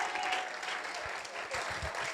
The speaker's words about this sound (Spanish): ¡Ey! ¡Aplausos!